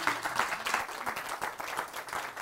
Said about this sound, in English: Round of applause for all those, thank you very much.